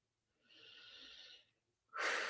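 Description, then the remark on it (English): Loud, deliberate breathing during a tapping exercise: a long, airy inhale lasting about a second, a brief pause, then a forceful, noisy exhale that starts abruptly and fills the end. “How good to make noise when you breathe.”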